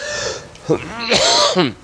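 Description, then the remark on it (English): A man clears his throat in a couple of short, rough, voiced bursts, ending in a light cough, with no clear words spoken. “Excuse me if I cough just a little bit.”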